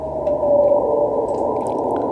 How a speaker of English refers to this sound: He did do his like sad like whale call while he was like beached.